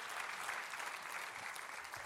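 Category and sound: crowd, audience applause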